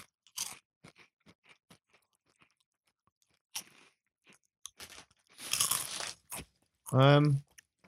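Crisp crunching and chewing of nacho-flavoured snack crisps from a newly opened bag, with sharp bursts of crackling bites scattered over several seconds, ending with a short vocal sound.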